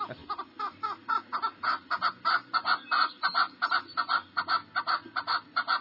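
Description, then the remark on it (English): A chukar partridge on top of a hill calls in a fast, repeated series of harsh chuck notes, a rhythmic cackling chatter that keeps up steadily for several seconds with no talking over it. “That's that old chukar laughing at you after you and the dogs made a heart-pounding, lung-burning climb to get to him up on top of the hill.”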